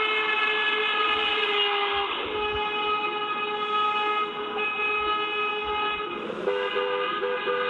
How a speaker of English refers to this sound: As the town fire chief, Clementi had lots of friends, and suddenly Rick and Cindy say it seemed like every single one of them was driving by honking the horn. And it wasn't to say hello.